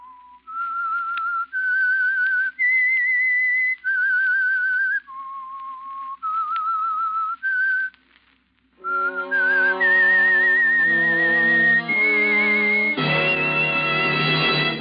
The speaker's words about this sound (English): The Signal Oil Program, The Whistler. That whistle is your signal. For the Signal Oil Program, The Whistler.